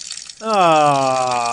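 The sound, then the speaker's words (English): A voice imitates water being released onto a plant: a brief soft hiss, then a loud, steady, gurgling voiced gush that holds strong until the end. “I'm going to release my water onto the plant.”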